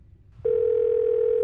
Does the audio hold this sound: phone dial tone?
yes